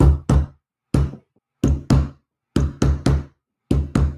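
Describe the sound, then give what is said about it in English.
A dwarf knocks a secret code on a solid iron door with a little hatchway: about ten heavy, booming knocks grouped in a deliberate rhythm of pairs and triplets with short pauses between, loud with no talking. “And as you watch, the dwarf that first went in knocks on the door with a secret code, which kind of goes.”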